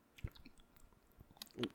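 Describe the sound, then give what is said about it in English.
Quiet mouth noises heard at midnight: wet lip smacking and labored swallowing, a few irregular moist clicks and gulps spread across the moment, with a fuller gulp near the end and no talking. “Midnight struck, and the sounds of labored swallowing and the smacking of lips began.”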